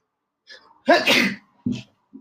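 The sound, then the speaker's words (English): A single loud sneeze: a short breathy intake, then an explosive burst, followed by a brief sniffle or exhale. No talking. “Hold on, I need to sneeze.”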